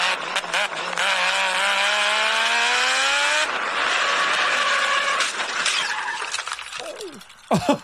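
A race car engine, played back from a phone video of a driver's third lap, screams through rising gear pitches, then shifts and drops, loud and continuous, ending with a brief squeal and clatter as it cuts off.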